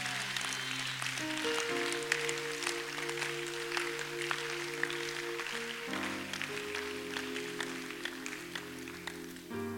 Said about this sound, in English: Clap for Jesus. I said, clap for Jesus.